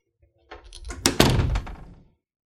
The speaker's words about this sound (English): You may close the door now.